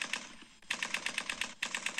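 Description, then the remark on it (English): A machine gun sound effect: rapid fire rattles off in quick, evenly spaced bursts, two short volleys separated by a brief pause, sharp with no voices. “That's clearly a machine gun, right?”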